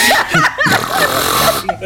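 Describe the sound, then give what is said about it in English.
A voice mimics loud snoring, a series of rough, rattling breaths with wavering pitch that run continuously for a couple of seconds. “It's snoring.”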